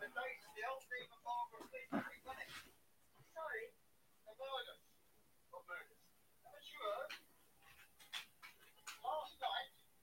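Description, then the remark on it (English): A dog pants in quick, breathy bursts, mixed with high, thin whimpering whines that come and go in short clusters over several seconds. “Bro, it's a dog.”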